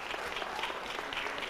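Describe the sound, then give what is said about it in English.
An audience claps together in a dense, steady burst of applause, many hands blending into a continuous crackling wash with no voices standing out. “You're going to be clapping for other folk.”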